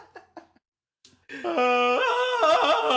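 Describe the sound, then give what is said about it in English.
A loud, sustained Tarzan-style jungle yell from a human voice, warbling with abrupt up-and-down pitch jumps for nearly two seconds, following a few soft brief sounds and a short silence. “That's like George of the Jungle.”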